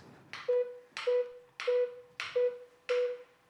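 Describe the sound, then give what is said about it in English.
A metronome held in a hand ticks five times at a steady, even pace, each tick a sharp click followed by a short, mid-pitched ringing tone, with no voices. “Except, of course, for the metronome ticking in his hand.”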